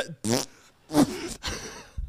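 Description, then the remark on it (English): Three rough, guttural bursts, each lasting a fraction of a second, sounding like burps. The first two are loud and throaty, the third is raspier, and no talking is heard. “Yeah, we burp too.”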